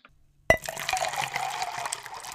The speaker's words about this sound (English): Every time you hear the word hair, pick up your cup and drink what's in it. Let's go ahead and take a shot. Clink, clink, clink, clink, clink, clink.